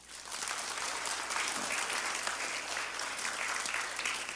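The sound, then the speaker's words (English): A church audience claps for newly saved people joining for baptism, a dense, steady wash of many hands, sustained at an even level for several seconds with no voices rising above it. “Let's clap for them.”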